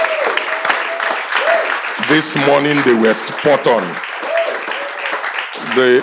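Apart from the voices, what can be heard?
audience clapping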